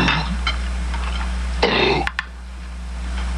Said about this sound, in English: Oh, he's just yakking on a bone. He got it up. He's all right now.